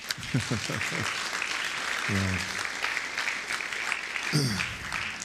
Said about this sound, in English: Yeah. We can clap for them.